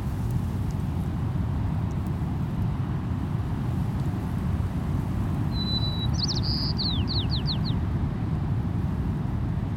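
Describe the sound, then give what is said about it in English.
A Caspian tern hovering on the winds above the dunes calls briefly in the middle, a thin note followed by a quick run of descending, raspy chirps, fairly faint over a constant roar of wind buffeting the microphone. “A Caspian tern is hovering on the winds above us.”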